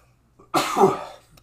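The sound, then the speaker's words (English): A single sneeze: a faint intake of breath, then a sudden loud, breathy burst that trails off within about half a second. No one speaks. “But yeah, so mine must be sneezing.”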